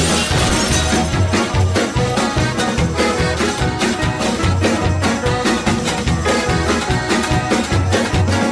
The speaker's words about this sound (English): The sound, you can hear the background, the like glass breaking, and yeah. Those people having a great time.